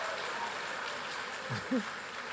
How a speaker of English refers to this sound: Keep clapping now. You can't stop clapping until I reach there. You clap till I reach there.